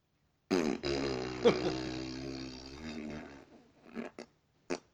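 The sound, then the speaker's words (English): A long, buzzing raspberry made with the mouth to imitate a fart, lasting about three seconds, followed by a few short sputtering bursts and breaths. “Making my own fart noise.”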